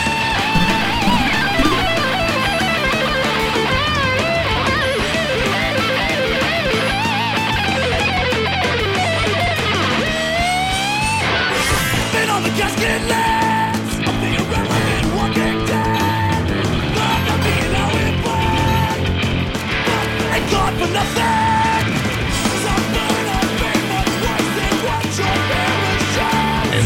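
A fast, energetic punk rock song plays at full volume with distorted guitars, pounding drums and shouted vocals, dense and driving from start to finish with no pauses.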